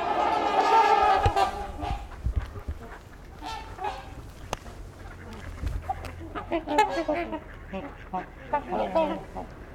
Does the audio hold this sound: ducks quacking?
yes